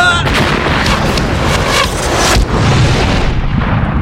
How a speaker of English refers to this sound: The massive keyhole exploded, sending dense fragments of his metal slicing through the room. The blast sent Tully crashing against the far wall.